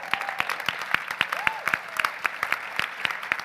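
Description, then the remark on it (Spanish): An audience applauding with sparse, uneven claps, sharp and crisp, never building into a full ovation. A faint tonal voice briefly rises underneath. “Aplaudan aunque no les guste.”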